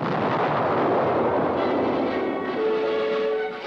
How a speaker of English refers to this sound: May 1943, the invasion of Attu. The United States fleet pounded the ice-hardened Alaskan island in an all-out bombardment, for the Aleutian chain had to be secured at all costs.